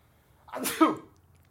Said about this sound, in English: Bless you. Oh, wow. Yeah. I sneeze and I'm like, wow, niggas just...